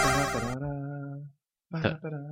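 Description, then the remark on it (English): A bright electronic ring-collect chime from the video game Sonic the Hedgehog 2, ringing out with a sustained tone for about a second, then after a short silence a second quick burst of chiming tones. “I mean, it's just a little chime from Sonic the Hedgehog Part 2.”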